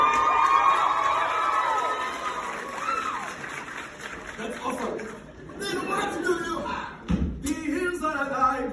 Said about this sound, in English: he had so many special reactions and applause as well. Like right from the beginning when Christian arrives in Momantra and bursts into their conversation.